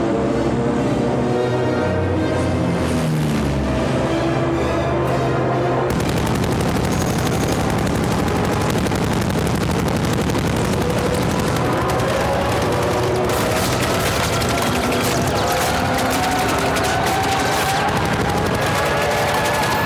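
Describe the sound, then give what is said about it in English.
Rapid bursts of gunfire crackle loudly and continuously over a swelling music score as Statham fires a weapon down a dock at people in a film action scene, the shots coming in dense automatic volleys with a rumbling, chaotic backdrop. “And he's firing the weapon down that dock of the people.”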